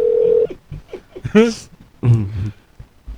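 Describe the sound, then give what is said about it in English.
A steady electronic phone tone sounds loudly for about half a second as a phone call is placed again to the same person, then it cuts off and people talk over a few scattered noises. “He's like, this motherfucker's calling me again?”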